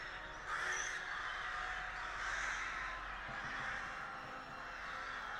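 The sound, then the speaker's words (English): A flock of crows caws continuously, many harsh overlapping calls forming a dense, steady clamor with no speech. “The army of crows dive bomb the Fomorian foe.”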